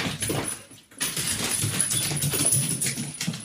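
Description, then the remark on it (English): A dog whimpers and yips excitedly in short, high-pitched bursts, with a brief pause near the start, followed by steady restless whining and jangling noise over about three seconds. “Dog's got the zoomies.”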